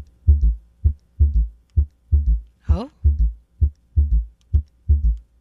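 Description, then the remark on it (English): A recorded human heartbeat, steady and thumping, with paired lub-dub beats repeating at a regular pace, loud. A brief spoken exclamation cuts in once near the middle. “Interesting heartbeat.”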